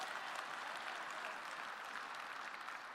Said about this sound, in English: Can anybody give a hand clapping to God who is able?